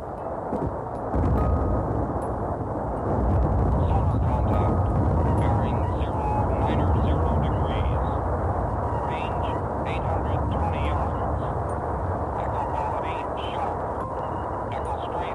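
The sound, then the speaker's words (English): A rain squall as a dense, steady hissing roar with a heavy low rumble beneath, continuing without pause from start to finish and holding a fairly constant loudness. “Listen now to a rain squall.”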